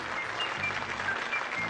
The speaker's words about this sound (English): Oh, bit of applause.